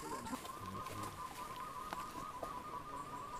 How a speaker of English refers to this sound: had discovered a tree full of barbettes, and we were attempting to interact with them.